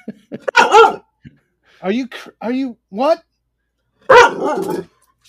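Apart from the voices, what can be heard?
dog barking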